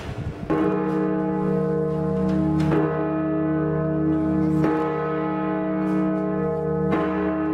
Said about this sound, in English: The bell is a 10-ton bell, cast in Britain, and the design, it's made of Gozo stone, and it is now one of the established features of the Grand Harbour entrance.